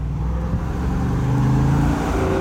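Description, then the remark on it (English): A car engine revs through its unmodified stock exhaust with a deep, throaty exhaust note, a steady low rumble rising and falling slightly, loud, with no one speaking. “It's so throaty and fun sounding.”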